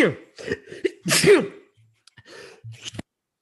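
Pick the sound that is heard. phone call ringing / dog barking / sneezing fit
sneezing fit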